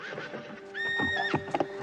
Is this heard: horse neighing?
yes